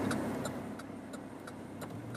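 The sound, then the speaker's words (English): Steady low engine and road rumble inside a moving car driving in traffic while leaving work, with a quiet, regular ticking like a turn signal clicking several times over the hum. No one speaks. “I'm just trying to concentrate a little bit because traffic is no joke.”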